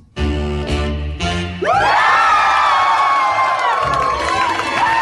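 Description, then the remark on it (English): After a brief tonal lead-in, a loud crowd erupts into sustained cheering, packed with overlapping high whoops and yells that keep going to the end. “Cheer like you took a shirt off.”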